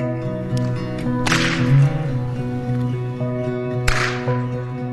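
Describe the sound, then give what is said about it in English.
Two sharp whip cracks snap out a few seconds apart, loud, over a steady tonal musical background with no talking. “And I spoke to a city council member in Kauai who said that they passed the law because there was one guy who was cracking a whip outside of City Hall, and they found it to be annoying, so they passed this law making the whip illegal.”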